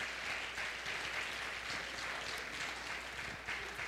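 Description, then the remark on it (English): An audience at a church service claps hands in praise, producing a dense, continuous wash of applause that stays steady and fairly loud throughout, with no voices standing out. “Clap your hands and praise him with everything you've got.”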